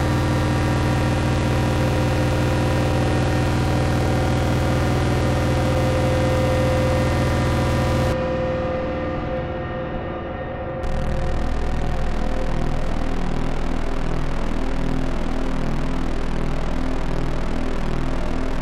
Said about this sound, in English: Honestly, this might end up being a little cooler. So this is just the sine wave out from the Pico R&D through the grind section, and that kind of super saw sound is a result of the wave shaping sliders comparing against that incoming sine wave.